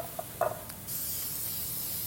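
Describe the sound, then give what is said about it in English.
A couple of light metallic clinks, then a steady hissing spray from an aerosol can of pan spray being sprayed into a muffin tin, fairly loud, continuing for over a second with no voices. “A little bit of pan spray, you could use butter to butter this or oil, pan spray works.”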